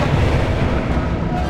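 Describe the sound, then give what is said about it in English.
A Skycrusher missile explosion destroying a tower above the rooftops: a loud, deep, rumbling blast that roars steadily for over a second with a heavy low-end churn and no voices. “They just blew up another tower.”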